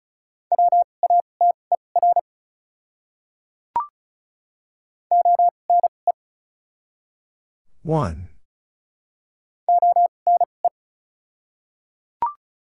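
Morse code at 35 words per minute with double character spacing, sending common words: three separate groups of rapid, steady mid-pitched beeps with pauses between them, a short voice-like sound in the middle, and faint brief chirps between groups.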